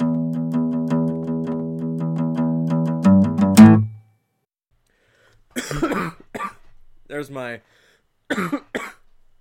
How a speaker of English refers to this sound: you know, I always got a cough at the very beginning. You could call that a cold open... Yeah, I guess. Get it? Because you opened it with a cold? That's true. Yup. I am recovering from a cold right now, but...